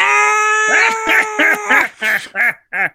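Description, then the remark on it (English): A person loudly imitates the Green Goblin's evil laugh, holding a high, nasal note before breaking into about five rhythmic, staccato cackles. “I don't know, but I did the Green Goblin laugh instead of the scream.”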